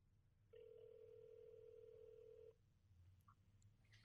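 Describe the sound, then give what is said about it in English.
A single two-second burst of an outgoing call's ringback tone, a steady electronic hum that starts and stops abruptly over a low background rumble, with no one speaking. “It's ringing in case you can't hear.”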